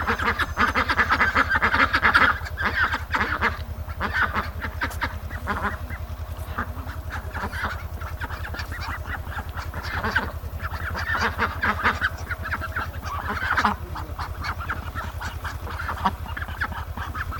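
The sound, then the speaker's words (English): A flock of ducks quacking steadily and loudly, many overlapping calls forming a continuous noisy chorus with frequent bursts of louder quacks throughout. “Maybe ducks.”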